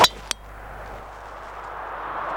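A golf driver strikes a ball with one sharp, bright, metallic crack, followed a moment later by a fainter click, then a low steady rushing noise with no talking.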